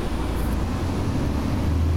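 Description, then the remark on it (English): A bus rumbles past outside, its deep, steady engine drone filling the background at a fairly loud, even level with no one speaking. “That's Nat a bus sound, right? Going by.”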